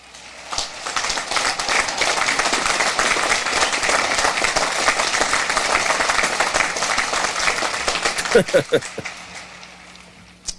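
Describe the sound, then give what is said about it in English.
Sustained applause from a large crowd, heard far in the background, a dense wash of clapping with some cheering that holds steady for several seconds before tapering off into a few scattered claps. “Okay, so you can kind of hear way in the background, you can hear the crowd screaming, but basically the crowd mics aren't really on, if there were any mics.”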